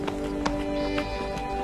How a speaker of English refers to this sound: Every day, as the first rays of the sun paint the horizon, the sound of footsteps echoes through the streets.